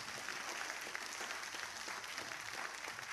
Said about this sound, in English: Let's give God a hand clap of praise for diversity.